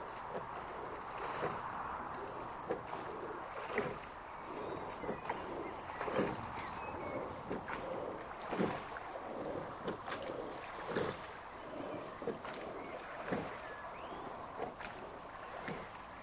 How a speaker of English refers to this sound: And a rowing boat passes by.